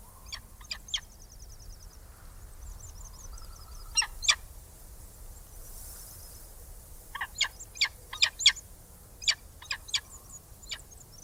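A bird of prey calls in sharp, repeated yelps, one short burst early and a longer chattering series later, clear over a quiet, steady outdoor hiss.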